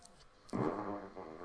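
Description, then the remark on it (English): A long, squeaky fart sound effect played on request by an Alexa smart speaker, a buzzy, tonal blast lasting about a second that starts abruptly and then trails off with a wavering pitch. “That was a long and squeaky one.”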